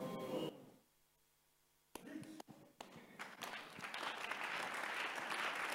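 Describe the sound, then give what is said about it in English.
A voice speaks briefly, then after a quiet pause an audience breaks into applause: a few sharp claps first, swelling into loud, sustained clapping from many people. “Now, hear this, don't clap here.”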